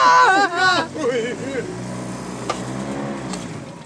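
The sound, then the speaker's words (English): An old pontoon boat motor, started after stalling three or four times, chugs to life and revs, with excited voices over the first second, then settles into a steady, rumbling drone. “Finally got the pontoon Started”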